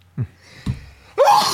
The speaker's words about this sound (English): I'm going to sneeze.